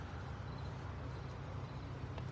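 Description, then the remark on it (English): Steady road traffic rumbles, a continuous low engine and tire roar from cars coming up quickly on a road outside a crime scene in Portsmouth in the evening, without any talking. “You can see these cars come up kind of quick.”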